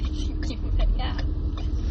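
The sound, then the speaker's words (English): A truck engine runs with a steady, deep rumble that fills the whole stretch, fairly loud, with some faint muffled voice sounds drifting over the top. “The sound the truck is making is basically my brain.”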